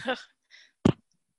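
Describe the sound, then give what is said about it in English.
A single sneeze: a short voiced intake and a faint hiss build up to one loud, sharp, explosive burst that cuts off quickly, followed by silence. “Bless you.”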